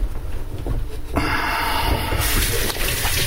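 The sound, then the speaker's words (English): A tap turns on with a sudden burst of steady, hissing running water that grows fuller partway through, as flour-covered hands are rinsed under the stream. No one speaks. “And I'm going to wash my hands off.”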